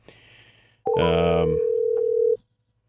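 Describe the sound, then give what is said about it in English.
A loud, steady telephone dial tone heard while placing a phone call sounds for about a second and a half, briefly layered at the start with a harsh buzzing burst, then cuts off abruptly, with faint low background noise around it. “Let's get Chris Story on the phone right now.”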